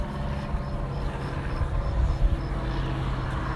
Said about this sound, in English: As soon as this car passes, I'm crossing over again